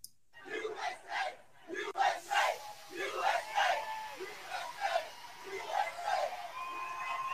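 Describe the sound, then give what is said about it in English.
A large rally crowd cheers and chants in rhythmic bursts, loud and reverberant, with swelling shouts rising and falling every second or so throughout. “I cannot believe we're actually cheering this way.”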